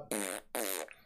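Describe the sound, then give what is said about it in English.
Two loud fart sounds in quick succession, each a short raspy, buzzing burst lasting about a third of a second, separated by a brief pause, with no talking. “I was tempted great to like, intro it out with farts.”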